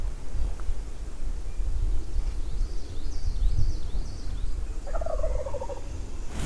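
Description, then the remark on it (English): A wild turkey gobbles from a tree about 50 yards away, about an hour before daybreak, a rapid warbling burst that rings out clearly, with fainter chirping calls before it over a steady low outdoor rumble. No one speaks. “I kind of semi-jokingly asked him if he heard the turkey that I heard gobble.”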